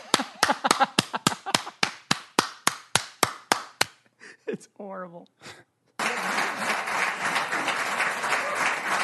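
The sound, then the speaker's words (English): A rapid run of about fourteen loud, sharp hand claps right up close to the microphone, evenly spaced, followed by a brief voice and then a rush of noisy background. “That's worthy of a clap right next to the microphone.”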